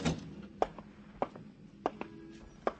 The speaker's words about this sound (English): and then stare at the walls, and then hear the door open for it, to let it all in again.